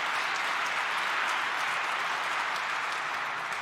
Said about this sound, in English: So a round of applause for everybody who's here tonight and everybody helping out.